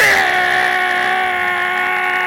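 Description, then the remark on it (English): A voice mimics a loud motorcycle with a sustained, buzzy engine-like drone. The pitch starts high and dips slightly, holding steady and loud for about two seconds. “I'm a motorcycle.”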